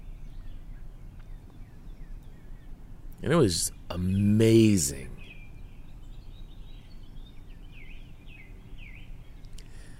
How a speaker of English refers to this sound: the best way that I could describe it to you is that when I stepped out onto this back patio to sit here and watch the sun come up, I felt like I was in the rainforest, surrounded by the song of countless birds.